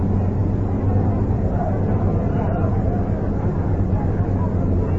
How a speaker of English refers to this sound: Helicopters continually soar around Atlanta Stadium here, obviously, or I would at least think, taking pictures for tomorrow morning's newspapers of the vast crowd here on a hot and humid night.